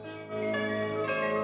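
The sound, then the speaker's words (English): The More You Know public service announcement chime: a bright, shimmering chime of layered bell-like tones swells in and rings sustained for about a second and a half, clear, with no talking over it. “Can you play the More You Know chime after that story?”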